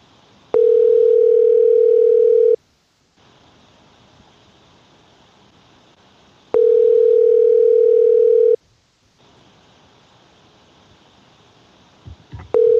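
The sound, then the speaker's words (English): A phone's ringback tone on an outgoing call repeats in long steady two-second rings separated by pauses of about four seconds, clear with a faint hiss between rings and no talking. “You guys hear the phone ringing?”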